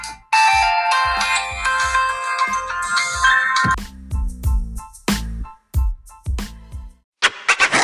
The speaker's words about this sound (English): Sometimes I forget to turn the ringer off on my phone when I am doing a segment. And so the phone will ring and it just throws me right off what I was concentrating on.